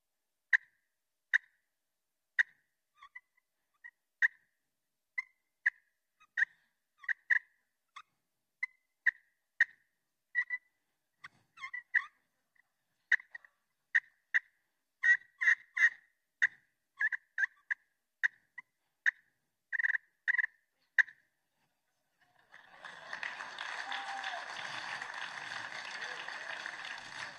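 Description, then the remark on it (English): A person uses turkey calls to imitate a flock of turkeys feeding along through the woods: scattered clucks and yelps tick along in an irregular, steady stream, ending with a few seconds of dense, raspy noise. “So what I can do is I can sound like a flock of turkeys feeding along through the woods.”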